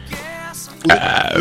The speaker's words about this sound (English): That was me doing a radio burp. You like that?